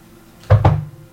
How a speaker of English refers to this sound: Hugh hears a crisp knock on his door.